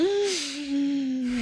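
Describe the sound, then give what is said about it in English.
A long, exaggerated deep inhale into the chest lasting over a second, airy, with a steady voiced, whistling tone running through the rush of breath. “So most of us, when we breathe, especially if you're breathing shallowly, you'll breathe into your lungs, which does feel really good.”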